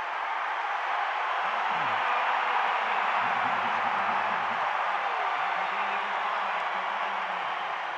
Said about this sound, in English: Donovan drives. Donovan to the basket. Fouled by Len. 2 free throws for Donovan. Crowd's into it now.